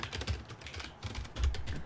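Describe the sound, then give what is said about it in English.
Rapid typing on a computer keyboard while doing a Google search, a quick irregular run of clicky keystrokes with a few heavier taps, heard on its own without any talking. “I'm Googling this.”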